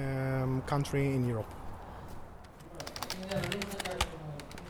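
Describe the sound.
Rapid clicking of three hackers typing on computer keyboards in a small room, an irregular patter of crisp keystrokes, following a brief stretch of someone talking at the start.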